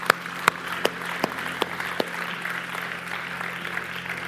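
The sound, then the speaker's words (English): An audience claps their hands in praise to God after a prayer, with several sharp, loud claps standing out early over a steady, dense wash of applause that continues at an even level. “Can we give God a hand clap of praise for how good he is?”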